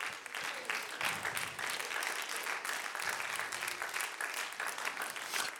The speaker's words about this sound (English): I think on my computer, under sound effects, they call that a golf clap.